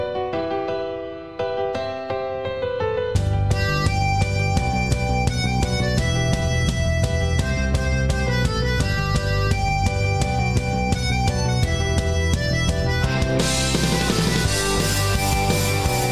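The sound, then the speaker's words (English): The theme music from The Office TV show plays alone: a brief, softer opening, then a full band kicks in with a bright, bouncy melody over a steady, driving beat, loud throughout. “It was from The Office.”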